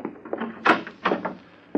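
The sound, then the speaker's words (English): The back door of a two-room suite opens with a few short wooden clunks and rattles, moderately loud, with no one speaking. “That the back door?”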